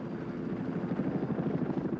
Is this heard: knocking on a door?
no